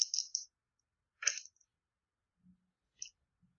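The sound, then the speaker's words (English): Dice clatter across a hard tabletop in a few short, sharp bursts, with soft low thumps between them, rolled for a resistance roll in a tabletop game. Moderately loud, with quiet gaps and no voices. “It's a minus 3 on the dice.”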